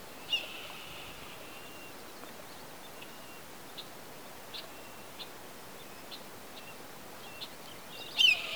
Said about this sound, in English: Hear that red-tailed hawk flying above? A little blackbird's chasing it, so it's bugging it. They have a nest nearby.